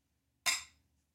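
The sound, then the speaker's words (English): A single bright clink of glasses touching in a toast, with a sharp high-pitched ring that fades out within half a second. No one speaks. “Well, cheers.”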